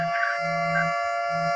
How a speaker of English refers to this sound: I'm hitting the siren.